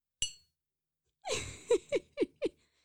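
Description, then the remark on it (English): A single bright clink of coffee mugs tapping together in a toast to Betty White rings out and fades quickly, followed after a short pause by a run of breathy, rhythmic laughter. “Cheers to Betty White with our coffee.”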